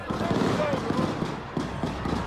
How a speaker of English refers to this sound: And they were at Kansas City's Union Station as the parade ended and the shooting started. Cousin thought it was firecrackers, sound captured on video from TMZ.